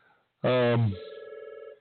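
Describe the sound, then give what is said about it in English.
An office telephone rings with a rapid electronic warble, its trilling tone pulsing steadily after a short, louder burst of sound at the start. “Somebody's calling the office. Do you want to get that phone?”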